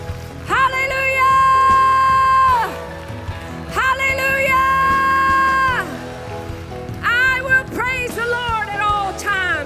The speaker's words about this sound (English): In the name of Jesus, give Jesus Christ the greatest hand clap of the day.